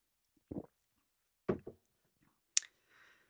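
Someone drinks water into a microphone: a few soft, wet gulping swallows spaced apart, then a sharp mouth click and a faint breathy exhale, with no talking.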